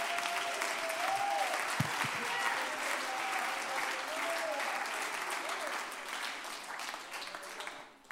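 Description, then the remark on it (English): An audience breaks into sustained hand clapping as praise to the Lord. It is a dense, steady wash of applause with scattered cheers and voices rising over it, fading slightly toward the end. “Would you give the Lord a great hand clap of praise?”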